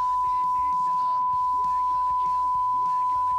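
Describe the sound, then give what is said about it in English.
A steady, high-pitched censor beep holds one unbroken tone for over three seconds, masking the talk of people speaking underneath it. “I'll beep it out.”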